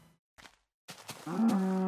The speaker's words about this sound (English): Moo to you too, sir. Moo to you too.